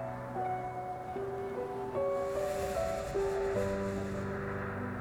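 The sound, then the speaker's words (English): Ocean waves wash steadily onto a shore as a soft, continuous surf beneath sustained, calm musical tones that shift slowly in pitch. “One with the ocean.”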